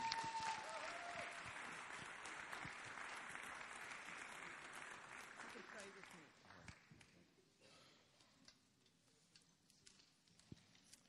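A crowd applauds with dense, steady clapping that gradually thins out after about six seconds, leaving a few scattered claps at the end.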